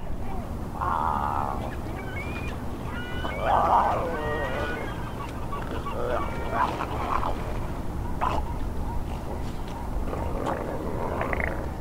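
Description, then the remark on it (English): Seals growl and snarl at each other in a scuffle, harsh mid-pitched bursts breaking out every second or two over a steady low rumble of wind and surf. “We leave you with the sounds of seals.”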